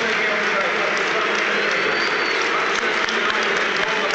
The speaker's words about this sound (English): A shake of the hand with Roberto Martinez. A few boos, a smattering of applause, not too much fuss in the end.